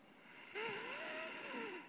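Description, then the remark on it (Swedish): A person imitates their grandmother's very heavy breathing: a single drawn-out, raspy breath with a faint whistling wheeze running through it, fairly loud after a brief quiet moment, with no talking. “Var det inte lätt att få panik när just det hände med din mormor, när du hörde hennes andning, att det inte fanns så mycket du kunde göra, eller vad ledde detta till?”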